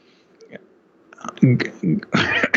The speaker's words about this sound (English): Pardon me, I don't know why I'm coughing so much today.